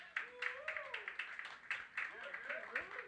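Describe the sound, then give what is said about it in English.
An audience claps in a steady rhythm, sharp repeated claps about three or four per second, with voices rising and falling underneath, clapping to vote for keeping a music beat that was played. “For everybody that would keep that beat, clap it up if you would keep that beat.”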